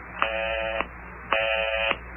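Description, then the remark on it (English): A telephone busy signal heard while dialing a number on a phone in a living room: two identical buzzing tones, each about half a second long, separated by a short gap. It sounds thin and slightly muffled, as if heard over a phone line, with no voices. “But I keep getting that busy signal.”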